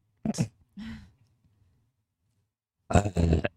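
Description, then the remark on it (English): Short guttural burps: two quick croaky bursts, a pause of near silence, then a louder, rougher belch that rumbles for about half a second. “Yeah, that was a burp.”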